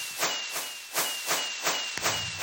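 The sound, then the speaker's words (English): A steady run of fireworks set off during a server showcase, bursting in about four sharp crackling pops spaced evenly over a constant hiss, with a thin high whistle running underneath. “what can set off the fireworks?”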